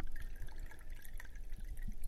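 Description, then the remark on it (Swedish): Wine being poured, a steady trickling, gurgling stream of liquid with small bubbly splashes throughout, fairly soft and unbroken for about two seconds, with no talking over it. “Lite vin.”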